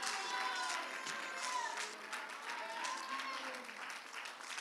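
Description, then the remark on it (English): A large crowd claps and roars to Jesus at a church service, a dense wash of applause with shouting voices mixed in, sustained and loud throughout. “Why don't we roar and clap our hands to Jesus?”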